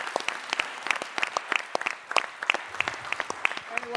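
A round of applause from a small group, with dense, rapid claps of fairly steady loudness running throughout and a faint murmur of voices underneath.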